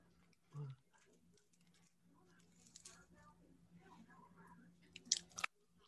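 Someone chews French fries on the right side of the mouth, with soft, moist crunches and mouth sounds, a few sharper bites near the end, over a low steady hum.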